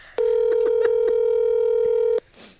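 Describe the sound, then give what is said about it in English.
A telephone dialing tone, as a phone call is placed, hums steadily and loudly for about two seconds, with faint clicks over it, then cuts off abruptly, leaving a brief rustle of background noise. “Imagine if somebody doesn't answer the phone.”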